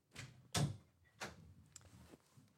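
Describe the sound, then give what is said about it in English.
A door being shut, with a couple of short, solid thuds and some rattling handling noise as it closes; no one speaks. “Shut the door then.”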